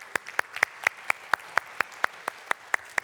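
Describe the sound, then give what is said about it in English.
Steady, evenly spaced hand claps from a church audience, about a dozen sharp beats in quick rhythm, moderately loud, with no talking over them. “And I just want to applaud you.”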